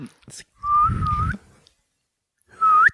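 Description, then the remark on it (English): Two short whistled notes, a longer gliding one and then a brief rising one after a pause, whistled by a person sucking air inward through the lips, with an airy, breathy inhaled quality, fairly loud. “I didn't even know you could fucking whistle by blowing in, like pulling in.”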